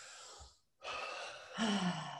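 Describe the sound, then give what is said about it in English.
Heavy, labored breathing of a person having an asthma attack: a harsh inhale, a brief pause, then a longer ragged breath with a low wheezy, strained tone, loud and alone without talk. “If I move too much, I'll make the asthma worse. So just sit and breathe.”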